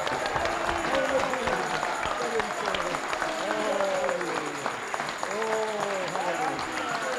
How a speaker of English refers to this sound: Everybody praise the Lord. Praise the Lord! Hey! Give him a clap! Come on, come on!